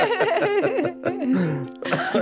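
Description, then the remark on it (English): A person coughs in a fit, with harsh, voiced, throaty bursts and a couple of sharper rough hacks, fairly loud, with no clear speech. “Oh, finally coughing.”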